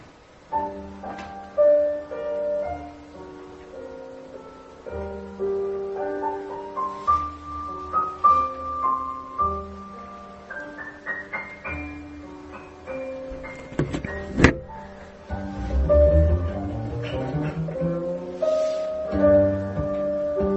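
A recorded song plays: a tonal melody moves over steady sustained bass notes at a moderate, even volume, with a brief louder swell of busier sound near the end.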